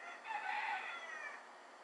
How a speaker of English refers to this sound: Yo, this rooster really wants to be on the show today. So, shout out to you, Foghorn Leghorn. Out there chirping hard as shit. Fucking up my show. Well, since old buddy wants to keep chirping in, I guess I'm gonna shut it down here.